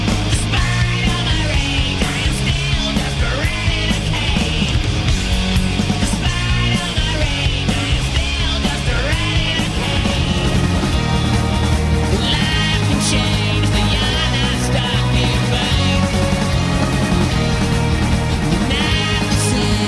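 A loud, dense montage of rock songs plays continuously, with heavy bass, driving drums and bright distorted guitars, shifting from one song to the next with no talking over it.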